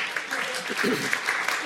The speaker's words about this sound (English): Right, awesome. Great, I'll give a round of applause. That's terrific.